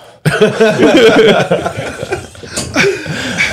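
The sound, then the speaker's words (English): A loud voice imitates heavy panting: rapid, breathy gasps run together for a few seconds, partly voiced and edging into chuckles, after a brief silence at the start. “You're like panting.”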